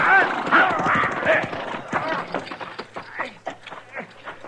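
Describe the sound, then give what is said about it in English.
A horse whinnies in loud, high-pitched bursts near the start, then hooves clop in a rapid, uneven rhythm that carries on steadily to the end, fairly loud. “He got my horse, but I'm pinned down.”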